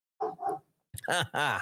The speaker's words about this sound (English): My dog agrees because he's barking. There must be a Democrat outside.